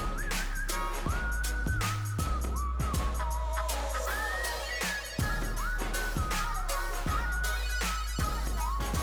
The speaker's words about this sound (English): Strong whistle.